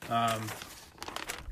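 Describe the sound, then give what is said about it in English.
Crisp crinkling of paper being handled, a rustly burst that follows a brief voiced sound and continues in scattered crackles for about a second. “I just said there was no script, and you guys might have heard the paper there.”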